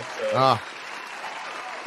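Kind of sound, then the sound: crowd, studio audience applause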